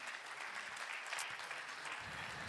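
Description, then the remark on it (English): Steady audience applause, a dense continuous patter of many hands clapping at an even, fairly loud level throughout, with no voices standing out. “Feel free to keep applauding.”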